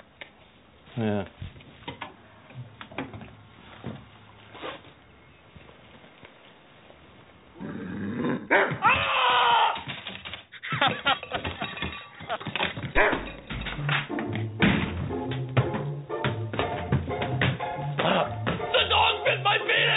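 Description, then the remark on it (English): A dog growls and barks, with quieter grumbling at first, then louder, more intense snarling and repeated barks for the second half. “Hey, it's not the first time with you and the dog.”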